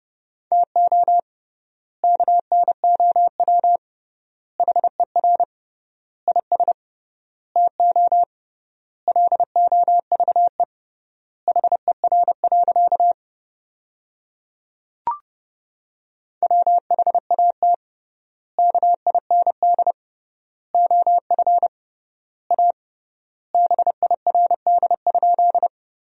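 Morse code at 30 words per minute with triple word spacing, sending sentences built from the 400 most common words: a steady mid-pitched beep keyed into quick dots and dashes, grouped into words with clear pauses between them. No voices, and one soft click partway through.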